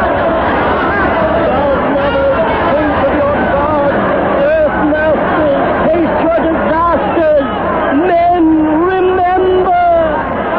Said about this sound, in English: They're boiling around us like mullet. It smells sharp. We can't move for the mob. They're crazy with terror.